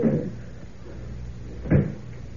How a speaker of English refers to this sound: There we are. Door's locked, and I've got the key.